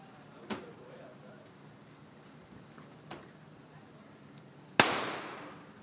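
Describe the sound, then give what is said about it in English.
A single loud, sharp shot from a double-action pistol fired with the hammer down cracks near the end and trails off in a brief echoing decay, preceded by two faint clicks and a low murmur of voices. “So maybe this first one, give it a pull with the hammer down and see just how heavy that trigger pull is.”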